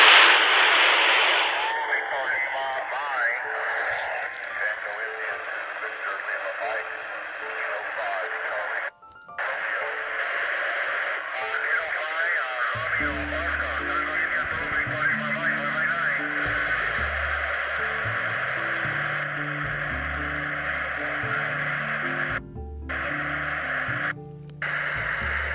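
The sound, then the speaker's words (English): Tinny, band-limited audio from a UV-82 handheld ham radio transceiver, with steady hiss and crackling static, voices coming through its small speaker, with brief cut-outs and later a low thumping rhythm underneath. “I've got a UV-82 in the right pocket of my bag. Here we go. And I'm using my HT, other UV-82 in my other hand.”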